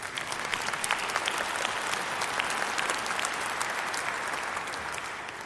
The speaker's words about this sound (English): Yes, you may clap if you agree.